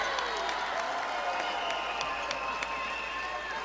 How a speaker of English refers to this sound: Crowd comes alive inside the Atlantic Union Bank Center, as the Dukes have outscored the Mountaineers 7-3 since halftime to build a 13-point lead.